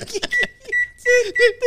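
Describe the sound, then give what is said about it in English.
A voice mimics microwave button presses and the oven starting up: a few short, high tonal beeps followed by a longer buzzing, hummed tone, fairly loud, over under two seconds. “I got to put the sound in the button, pressing on the microwave.”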